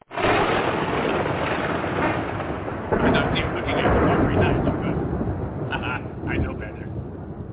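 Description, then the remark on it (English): A fake thunder sound effect plays as a loud, continuous, muffled rumble of crackling noise that holds steady for several seconds and eases slightly toward the end. “Fake lightning is not near as...”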